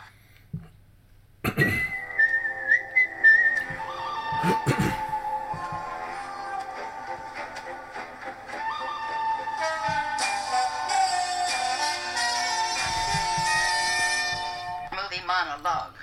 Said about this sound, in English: The other thing I do at the top of every show, segue, is push a button that will start a series of five-minute timers like this.